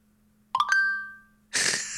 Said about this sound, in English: Okay, so I heard your phone. That was a separate message. Yeah, that was a text.